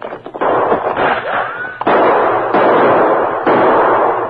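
gunshots exchanged

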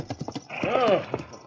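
horse hooves clip-clopping

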